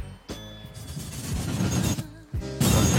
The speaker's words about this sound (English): Was that a reverse explosion? That was a reverse explosion. Should we hear it in reverse again?